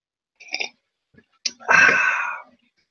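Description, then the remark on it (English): A short slurping sip of coffee, a small click like a mug being set down, then a longer breathy, rasping exhale of satisfaction. No talking. “Well, time for a sip of coffee.”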